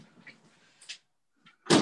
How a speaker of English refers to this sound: Can I pause for just 1 second? Someone's knocking on the door here. 1 second.